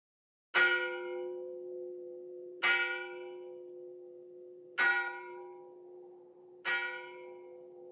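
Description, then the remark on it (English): A church bell tolls four times at a slow, steady pace, each strike ringing out loudly and leaving a long, humming resonance that overlaps the next stroke, with no voices. “People were summoned to church by bells.”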